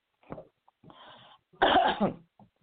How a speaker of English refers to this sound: We're not going silent, I'm just coughing. Sorry, folks.